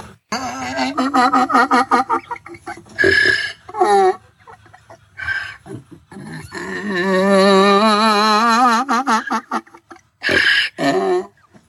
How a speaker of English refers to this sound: That is not a normal donkey noise. I mean, no. It's not normal. That is crazy.